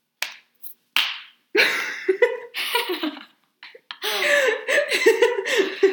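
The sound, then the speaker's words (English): A few sharp slaps of a person's hand against their own face land in quick succession, then give way to loud, sustained laughter and giggling. “She's like, why'd you just slap yourself in the face?”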